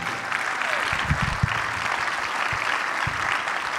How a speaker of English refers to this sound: I just thought that was awesome. That deserved a massively bigger clap than you just gave them.